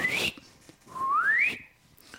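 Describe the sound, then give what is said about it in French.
A person whistles two quick sliding notes, the second a longer upward swoop, like a cartoon sound effect. Clear and close, with no talking. “Merde, j'étais en train de siffler, mais en glissant, mon sifflement a fait”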